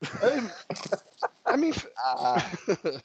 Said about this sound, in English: I want to know what his dog's doing, to be fair, now these noises coming out of it.